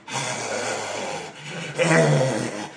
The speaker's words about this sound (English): He picks up Lucius's fishbowl and a loud breathing sound is heard.